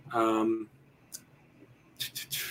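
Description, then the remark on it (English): A short murmured voice, then a few sharp computer mouse clicks as someone clicks through to an online news story: one on its own, then three more in quick, uneven succession against quiet background tone. “I am just clicking through to the deadline story to see if they gave one”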